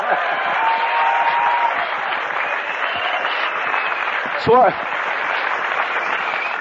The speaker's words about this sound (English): I think you should applaud yourself for being here. How about that, huh?